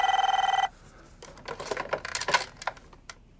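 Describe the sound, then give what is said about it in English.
An old-style telephone bell rings in one short, rapid trilling burst, then stops, followed by a second or two of close clattering and rattling, like a receiver being handled. “when Margot finds the book, he gets a phone call”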